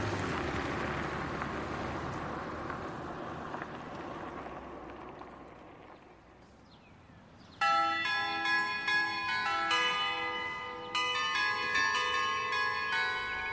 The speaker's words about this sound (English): That's an annoying doorbell.